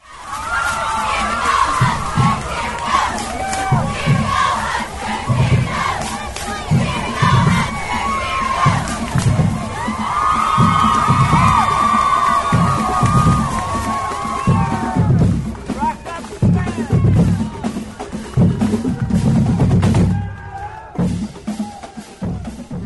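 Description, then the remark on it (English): A New Year's Day parade crowd of Nebraska and Clemson football fans, in red and orange t-shirts, cheers and chants loudly in unison over a steady, pounding rhythmic beat, with 100-piece brass bands in the parade. The massed voices rise and fall for about twenty seconds with a brief lull near the end. “And they had brass bands that were 100 pieces, and they were teaching all of their followers how to cheer for the game.”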